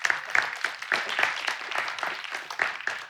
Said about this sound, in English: Yeah, that's great. You can clap. Go for it.